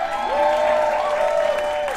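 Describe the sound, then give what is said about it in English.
A crowd applauds steadily for event team leads standing up as their names are read out, dense clapping filling the whole stretch at a fairly loud level, with a faint sustained tone or cheer drifting over it and no one speaking. “I don't want all my leads to come up, but I will read off their names so they can stand up and you can give them a big round of applause.”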